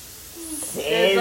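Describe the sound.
Shallots sizzle in a pan, a steady frying hiss that swells louder partway through, with a voice briefly sounding over the crackle toward the end.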